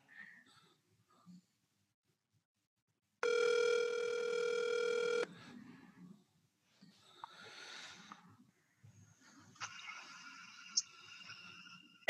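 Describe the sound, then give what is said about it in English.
A phone rings on an outgoing cold call to a man: one steady, buzzy ringback tone lasting about two seconds, followed by quieter electronic chirps and tones, with no talking. “I'm going to text him and say, answer Matt's phone call.”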